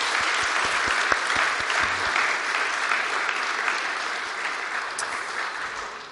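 A round of applause from a crowd, steady dense clapping that holds at a fairly loud level for several seconds before tapering slightly toward the end.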